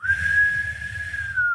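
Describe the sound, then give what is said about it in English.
A single sustained whistle blast from the other side of a market holds a steady pitch for about a second and a half, ringing over a low, continuous rumble of crowd bustle. “As you hear another whistle from the other side of the market.”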